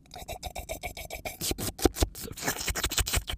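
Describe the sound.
A dainty sip of wine imitated with the mouth: a run of quick, soft slurping rasps in a steady rhythm, growing slightly louder and breathier toward the end, with no talking.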